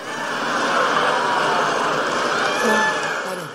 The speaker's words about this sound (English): Now, that actually sounded like a bit of a mixed kind of reaction in the crowd. If to my ears, it was not all raucous cheering from his base here at Michigan.